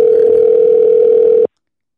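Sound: phone call ringing tone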